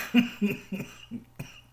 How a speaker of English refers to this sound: Now we're both coughing. Sorry.